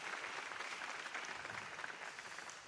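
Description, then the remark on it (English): A church audience applauds steadily, dense overlapping claps forming a continuous wash of noise that holds at an even level throughout, with no voices standing out. “You can clap for that.”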